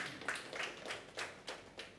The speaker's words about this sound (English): What a pathetic clap that you gave for yourselves.